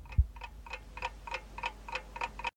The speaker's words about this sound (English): You can hear him double tap his phone.